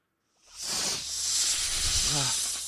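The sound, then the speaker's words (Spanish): Snakes hiss in a loud, steady, breathy rush that starts after a brief silence and continues unbroken to the end, with a faint low murmur briefly underneath. “Sabía que era la hora en la que las serpientes debían salir de sus escondrijos para empezar a cazar.”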